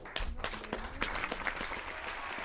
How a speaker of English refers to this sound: There was silence. And because nobody quite knew what to do. And then one person started clapping. And then the whole audience burst out into applause.